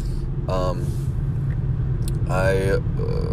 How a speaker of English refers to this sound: It is now 1 a.m. on January 29th. And I'm driving home.